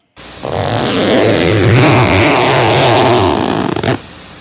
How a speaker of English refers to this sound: You're zipping up your pants. Yes. Zipper for your pants, but okay. I know, right? Well, you guys are correct. Yes. That is it. Yeah. It's a zipper. It is a zipper.